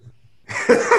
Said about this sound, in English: I'm coughing up a storm.